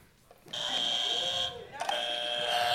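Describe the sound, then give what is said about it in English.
A game show buzzer sounds twice, each blast a loud, harsh, steady electronic tone lasting about a second, separated by a brief gap. “Second rule, you got to buzz in.”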